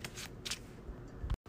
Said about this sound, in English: Logical reasoning gets shuffled back into my deck for the insight.